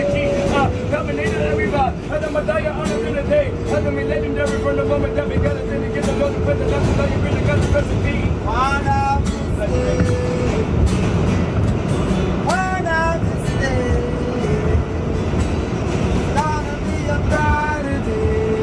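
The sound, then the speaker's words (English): A subway train rumbles loudly and steadily throughout, with a dense low roar and occasional rising metallic squeals, while muffled voices and the tonal sounds of a man singing and playing guitar on the train blur into the din. “They were doing this shit, but the train was going buck wild.”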